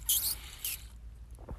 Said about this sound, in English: I'm just going to have a little sip of my sippy bottle.